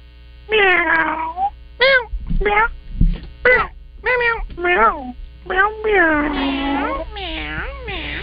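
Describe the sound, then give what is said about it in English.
A caller on the phone imitates a cat for National Kitten Day, meowing about eight or nine times in quick succession with rising and falling whines, sounding thin and phone-like over a steady low electrical hum. “Let's go to, it only says meow.”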